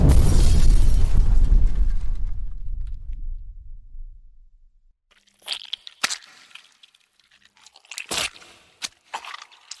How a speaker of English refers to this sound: The crushing and pumping increases speed, as does the flatulence, until one loud reverberating fart ignites and ends in a meat-splattering explosion.